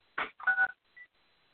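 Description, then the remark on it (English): A few quick electronic keypad tones from a telephone being dialed, two fuller beeps close together and then a shorter, fainter one, clear with no talking. “Okay, I'm trying to get our phone cut off there.”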